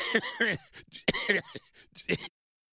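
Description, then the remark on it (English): A man coughs and hacks, a string of rough throat-clearing bursts mixed with strained, voiced groans, lasting about two seconds before stopping abruptly. “Yeah, I know, I'm hacking up, I'm coughing up a hairball, man.”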